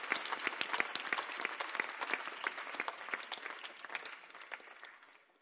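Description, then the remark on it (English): An audience claps steadily, a dense patter of many hands that holds for several seconds and then gradually thins and fades out. No one speaks over it. “Why are you clapping?”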